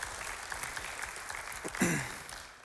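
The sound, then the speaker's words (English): A room full of people claps steadily for a few seconds for a woman as she returns to her seat, a dense, fairly loud patter of many hands, with a brief voiced cheer near the end before the applause begins to fade. “You can have a seat, give her a round of applause.”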